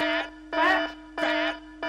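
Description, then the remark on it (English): A loud electronic alarm sound effect, a so-called fat alarm, blares in repeating bursts, about three harsh buzzing pulses in under two seconds with brief gaps between them, with no voices. “What you should really do is go to the rest of these chunks and drop a fat alarm right in their face.”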